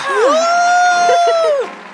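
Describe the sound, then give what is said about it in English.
A single voice imitates a crowd erupting into a cheer: a loud, high-pitched whoop that rises, holds steady for over a second, then falls away with a brief breathy trail. “And the crowd erupts into a cheer as they all raise their glasses into the air.”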